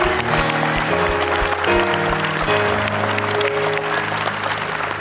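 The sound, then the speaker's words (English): A crowd applauds the fathers on Father's Day steadily for about five seconds, a dense, loud wash of clapping that barely varies, with sustained instrumental tones and a few low thumps underneath. “let's give these men a big round of applause.”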